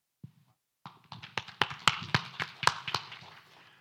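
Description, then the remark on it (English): A church audience applauding after the Lord's Prayer was recited in Aramaic: a burst of many overlapping sharp claps that starts abruptly, swells with a few louder cracks standing out, then thins toward the end. No one speaks. “Let me explain to you why you're applauding.”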